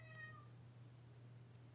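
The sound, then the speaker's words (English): A single short, fairly quiet meow from a cat named Iggy, followed by a low steady hum and a brief faint click at the end; no one speaks. “He does. Meows, meow.”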